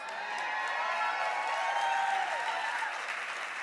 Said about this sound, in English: Okay, okay. That's how you cheered for me. That's how you cheered for me. Now let's cheer for your pastor.